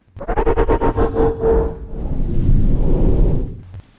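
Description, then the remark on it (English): A rapid, pulsing mechanical whir with a steady hum gives way to a loud, sustained rush of hissing air that fades out after a few seconds, as a chorus of pods open after a command to open all the pods is typed on a keyboard. “Second later, there was a chorus of loud hisses as the pod began to open.”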